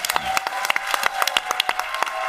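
A conference crowd applauds panel speakers steadily, with many overlapping sharp hand claps forming a dense, continuous wash of clapping, plus faint cheering mixed in.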